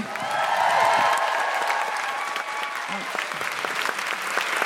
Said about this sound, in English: Big round of applause